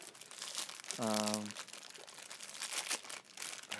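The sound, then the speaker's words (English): Continuous crackling of a plastic saltine cracker wrapper being crinkled and handled, with a brief voiced hum or murmur cutting in near the start. “Can't you eat a saltine?”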